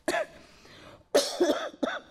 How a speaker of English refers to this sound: I don't know why I cough. Feel nothing. I just cough like that. You know when you have itching throat or something pushing, nothing, just cough out of nowhere.